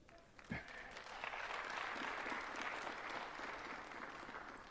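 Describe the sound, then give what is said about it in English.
An audience breaks into applause during a sermon after a brief sharp thump, the clapping swelling quickly and holding steady as a broad, dense patter of many hands. “You won't clap for that?”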